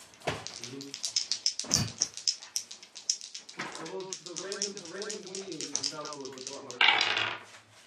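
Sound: dice being rolled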